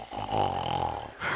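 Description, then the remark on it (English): A voice imitates a woman's loud, reverberating snore during a church service, one long drawn-out rattling breath with a buzzy, throaty texture, prominent, ending with a brief catch of breath. “Astonishingly loud, reverberating snoring, you know, and various folk are looking at me and pointing to her”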